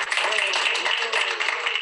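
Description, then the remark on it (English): A crowd claps steadily as Illinois Governor Pritzker signs criminal justice reform into law: many hands blending into a dense, continuous patter of applause that holds at an even, fairly loud level for a couple of seconds. “Clap for that.”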